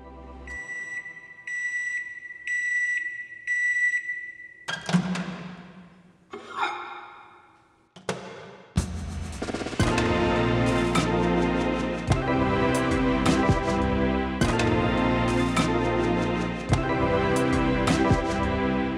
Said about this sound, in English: You say that you made this using an actual microwave? A lot of the percussion in this is microwave sounds.